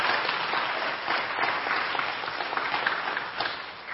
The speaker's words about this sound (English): And Christ Community Church family, can we express our appreciation through a little clap for the Rancho family?